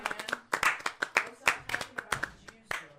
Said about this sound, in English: Everybody, give her a round of applause.